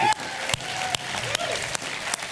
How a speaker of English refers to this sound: So why don't we just give a round of applause for those people.